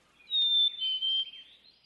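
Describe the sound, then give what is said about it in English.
A high, thin whistled bird call, a couple of sustained tonal notes gliding into each other over about a second, clear with no talking around it. “You can talk to a bird.”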